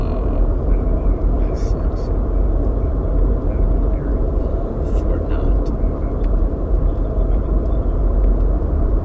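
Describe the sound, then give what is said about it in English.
A small drone flies overhead, its loud, steady buzzing drone holding level for the whole stretch with a heavy low rumble and no clear breaks. “Yeah, that one's not a particularly big drone, I didn't think.”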